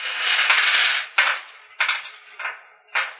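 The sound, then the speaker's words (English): A long, rattling clatter of dice tumbling across a hard table, followed by four separate sharp clicks spaced out as they bounce and settle. Fairly loud, with no voices. “Alright, roll it. Well, I gotta get a dice, so hold on.”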